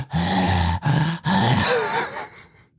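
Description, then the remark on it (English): A voice imitates breathing brains from a film scene in which meatballs turn into brains. The mimicked wet, squelching breathing comes in three loud, gurgling bursts, with short gaps between them and a fading, throaty tail at the end. “they're eating spaghetti and he looks down and the meatballs turn into fucking these breathing brains.”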